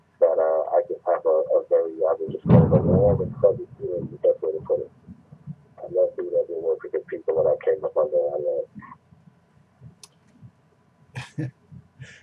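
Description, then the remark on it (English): A sudden crash of thunder bursts out as a short, deep, booming rumble, cutting loudly through a person who keeps talking over it. “Well, talking about Q just summed up a tremendous crash of thunder here. I don't know if you could hear that, but yeah.”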